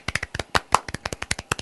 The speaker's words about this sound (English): Okay. That was a long golf clap. Really, it was a long putt.